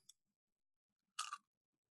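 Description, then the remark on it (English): A crisp, crunchy bite into fried chicken covered in hot sauce, loud for a brief moment, followed by quiet; a faint smaller crunch occurs just before it. “Ooh, it's still a nice crunch.”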